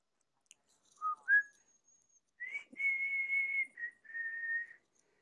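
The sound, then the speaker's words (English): A person whistles a short, clear melody alone: two quick rising notes, then longer sustained tones sliding between pitches, moderately loud with no talking. “Whistling?”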